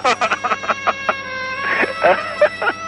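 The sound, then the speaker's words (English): Turkeys gobbling: a rapid, rattling burst of throaty pulses at the start, followed by several more warbling gobbles, clear with no talking. “They must be turkey birds.”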